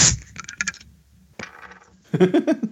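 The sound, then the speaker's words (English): A pressurized beer growler is opened with a sharp burst of hissing gas, followed by light metallic clinks, a second gushing spray, and then a busy, bubbling pour. “No, it was just a lot of pressure in the growler.”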